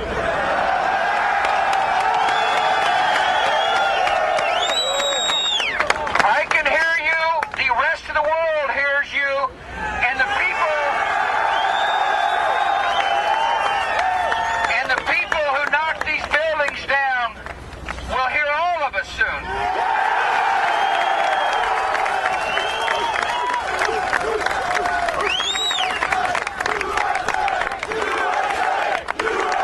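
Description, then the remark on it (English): A large crowd at a speech mourning lives lost in a terrorist attack cheers and yells continuously, shouting "We can't hear you," a dense roar of many voices with rising shouts and whistles cutting through, steady and loud throughout. “They were yelling, "We can't hear you."”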